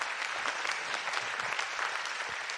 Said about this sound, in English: Can you give the Lord a hand clap if you believe that?